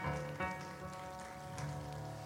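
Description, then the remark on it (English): A church audience claps steadily in a dense, continuous patter during a morning service, with sustained keyboard or organ tones holding underneath. No one speaks over the applause. “Can you give yourself a hand clap this morning?”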